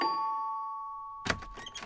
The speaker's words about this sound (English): They rang the doorbell.